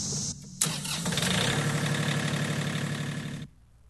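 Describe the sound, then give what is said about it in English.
A tractor engine cranks briefly, catches and starts, then settles into a loud, steady idle with a low rhythmic rumble for a few seconds before cutting off abruptly. No one speaks. “And I just hope that our family can do what this tractor does and learn to cultivate plant, grow, and let God give the increase.”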